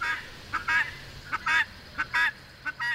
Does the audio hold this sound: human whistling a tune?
no